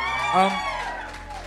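An audience cheers, with a loud sustained whoop peaking early over a steady wash of crowd noise and scattered clapping that carries on for the rest of the moment.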